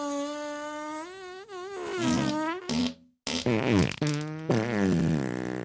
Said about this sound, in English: And here at Nürburgring, we support farting, and we want you to fart as much as possible.